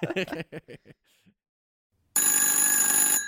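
A few short vocal bursts, like quiet chuckling, give way to a pause, then a loud telephone bell rings continuously for about a second, bright and metallic.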